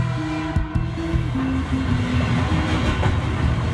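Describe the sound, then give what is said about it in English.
A train out of Paris rumbles steadily along the rails with low mechanical drone and rhythmic clatter, a continuous rolling noise with brief clicks of wheels over track joints, no voices present. “He boards the first train out of Paris.”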